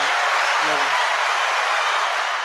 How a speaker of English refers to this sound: Let's give him some hand claps. Let's get J.R. Smith a round of applause.